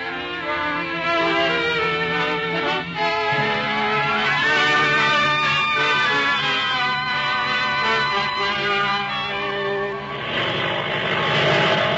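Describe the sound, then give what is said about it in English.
A propeller airplane engine drones loudly and steadily, its rich buzzing hum holding for the whole stretch with a slight shift in tone near the end. No voices are heard. “You can board the plane now if you want to.”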